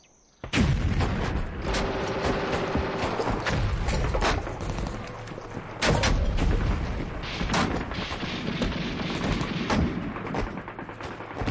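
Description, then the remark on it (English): Dense battlefield gunfire and artillery heard from a trench during a war, with sharp cracks and heavy booms going off continuously and overlapping, loud, with a brief lull around the middle before the barrage picks up again. “Sitting in a trench, amidst all the gunfire, is the composer”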